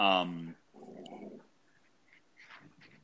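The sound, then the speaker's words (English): A Labrador dog named Dottie vocalizes: a loud, sharp opening burst, then a lower, rumbling growl lasting about half a second, followed by quiet with faint scattered sounds. “That's my lab, if anyone's curious. And she's like growling at me right now for some reason.”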